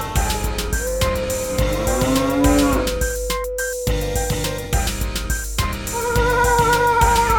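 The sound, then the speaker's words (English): A person imitates a cow with a drawn-out, low mooing call that rises and bends in pitch over several seconds before a second lowing sound follows, loud over a steady background hum. “Wait, did you just moo?”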